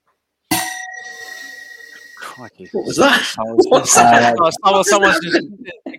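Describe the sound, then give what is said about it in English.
A single bright bell strike, marking the end of a round, rings out with a sustained, gong-like metallic tone that slowly fades over about two seconds, then someone starts talking. “That's the bell which signifies end of DraftKings. End of the round. That sounded like a gong.”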